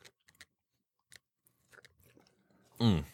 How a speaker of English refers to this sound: You gulped that down. Man, I'm thirsty. Really? What did you have? I had pop. Frozen. It was a frozen Coke or whatever.